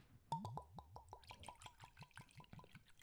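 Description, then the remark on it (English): A drink glugs steadily into a glass from a bottle, a quick run of rhythmic gurgling pulses, fairly loud, with no one talking over it. “There you go. Good pour.”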